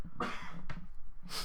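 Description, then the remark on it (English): A person coughs three times in quick succession, harsh, raspy bursts with brief pauses between them and no talking. “I'm going to cough now.”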